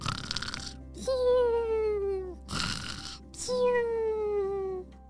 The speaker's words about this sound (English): Have you ever heard a butterfly snore? Me neither. That was pretty strange.